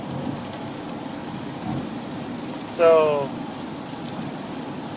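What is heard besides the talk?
rain falling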